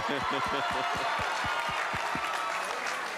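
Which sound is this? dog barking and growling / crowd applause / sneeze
crowd applause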